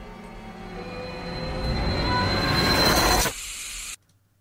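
A steady, static-like hiss resembling white noise swells under a rumbling, whining drone, then thins to a bright high hiss for a moment before cutting abruptly to silence. No one speaks.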